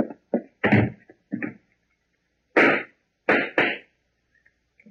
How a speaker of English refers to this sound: what were those shots? I don't know, Della. They came from the back hallway.